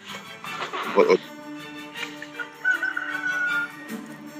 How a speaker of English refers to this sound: Pardon the bird. I hear a rooster. Yeah, I live on a farm, there's birds.